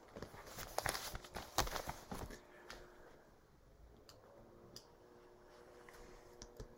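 A speaker switches to another piece of paper. Sheets are shuffled in a few quick rustling bursts, then a quieter stretch of occasional soft handling noises and light taps, with no talking.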